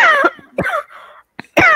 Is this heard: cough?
yes